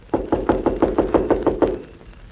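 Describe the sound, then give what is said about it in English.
A quick, steady run of about nine firm knocks on a wooden door, evenly spaced, followed by a short quiet pause. “Now remember, I'll knock, the doll will answer, and then I leave.”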